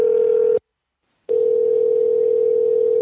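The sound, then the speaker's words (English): A steady, loud dial tone from a Skype phone call hums at one pitch, cuts out briefly for a moment of silence, then resumes and continues unbroken to the end, with no voices present. “Oh my God, now Australia is my default option on Skype when I want to make a phone call.”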